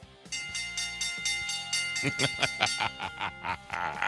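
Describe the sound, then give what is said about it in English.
A handheld bell, rung by Wesley Euler to mark the bell lap, clangs rapidly and repeatedly, its bright ringing tone sustained over a noisy background, with the strokes turning sharper and more rhythmic in the second half. “And he does not miss a trick, because that would be the great Wesley Euler ringing the bell, because it is the bell lap”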